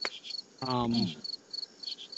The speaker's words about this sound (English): Man, that cricket's loud.